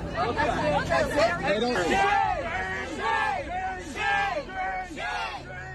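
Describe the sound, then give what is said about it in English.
A crowd of protesters shouting and yelling at a student over one another in a loud, agitated hubbub while forcing him out with a wall of bodies, with overlapping raised voices throughout. “When he didn't, they started to force him out with a wall of bodies, shouting at him.”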